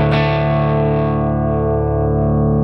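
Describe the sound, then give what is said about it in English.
A loud electric guitar chord from a Les Paul played through a Fuzz Face pedal and a 2x12 cabinet impulse response rings out through heavy fuzz distortion, thick and buzzing with dense harmonics, sustaining steadily with a touch of reverb and no voices. “It's a fuzz face, yeah.”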